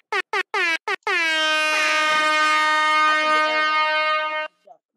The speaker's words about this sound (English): You know, I had to give us a Caribbean vibe. Yeah, I had to give us some air horns.